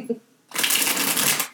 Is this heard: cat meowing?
no